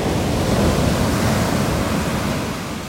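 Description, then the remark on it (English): Steady roar of small ocean waves, about 2 feet high, breaking and churning, a dense wash of surf noise that stays loud throughout and eases slightly at the end, with no voices. “But you see, that's the physics thing, is the sound you hear of the waves breaking is literally energy being released in the form of sound.”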